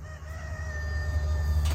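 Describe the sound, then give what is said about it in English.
A rooster crows in one long, drawn-out call, carried over a steady low rumble of background noise, with nobody talking. “A fucking annoying ass rooster's gonna go next.”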